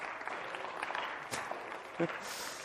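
An audience gives a round of applause for concordances (a Strong's concordance for Bible study), clapping steadily for a few seconds, a dense patter of many hands at moderate loudness, with one sharper crack partway through and a brief vocal whoop near the end.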